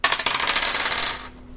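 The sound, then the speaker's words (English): Dice clatter and rattle across a hard surface for just over a second, rolled in a game for an attack to disarm a foe. A bright burst of rapid clicks slows and settles into quiet. “Roll your dice as you try to steal from this.”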